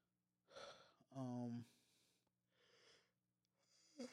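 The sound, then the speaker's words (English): A loud yawn from a tired person: a breathy intake swells into a drawn-out voiced groan that slides down in pitch, followed by softer, airy exhales. “Hey, yawning, guys. I'm very tired.”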